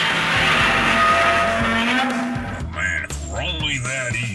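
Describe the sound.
A loud car engine roars steadily, then tires squeal in sharp, rising and falling bursts as the car skids, with some indistinct voices mixed in.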